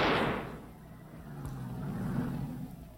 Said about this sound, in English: That's a hair trigger explosive flare.